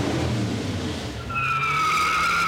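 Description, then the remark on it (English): A car engine rumbles loudly, then a sustained high-pitched tire squeal cuts in and holds for over a second, harsh, with no one speaking. It happens on a Friday cruise night in Taft, an oil town, where car collectors show off antique pickup trucks and custom rat rods. “It's cruise night when car collectors show off their antique pickup trucks and custom rat rods.”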